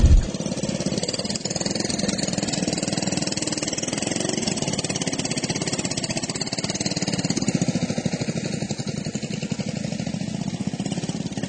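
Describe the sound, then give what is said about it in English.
Racing lawnmower engines roar at a lawnmower race in New Zealand, a steady, loud, buzzing drone that holds without a break, a continuous mechanical rumble with no voices over it. “I've been racing for about 12 years in lawnmower racing.”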